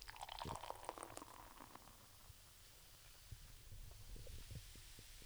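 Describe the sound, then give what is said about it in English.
Beer is poured with low, rhythmic glugging, opening in a brighter splashy rush before settling into steady throbbing gulps of liquid, fairly quiet, with no one speaking. “That was a satisfying... It was good. ...glug that was. Good head, though. Good fizz.”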